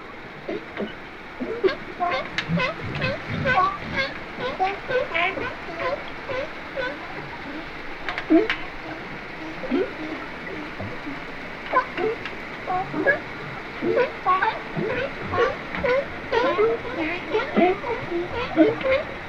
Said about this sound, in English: You'll hear boats go by too, so that'll be loud boaty sounds. So now I'm just going to let you listen to about a minute of just the underwater recording, not the above water recording, to give you an idea of what it sounds like.